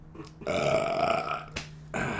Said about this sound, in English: Well, why did it all ripple? Because of my awesome burp.